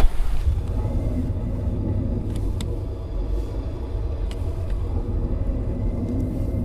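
Steady low road rumble from inside a moving car being driven to an auto shop, with a few faint, brief squeaks or scrapes from its grinding, noisy brakes. No one speaks.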